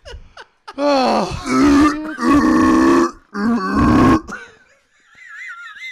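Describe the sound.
A person mimics a sea lion with three loud, drawn-out, throaty barking grunts in quick succession, followed by a faint warbling tone as the calls end.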